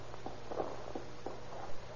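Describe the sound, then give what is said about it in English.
Soft footsteps walk along a path at a steady, unhurried pace, several muffled steps over a low background hum, with no one speaking. “Here's the path. Follow me.”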